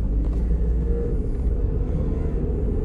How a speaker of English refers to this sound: The truck's on fire. Or that vehicle. I feel like he's out of oil.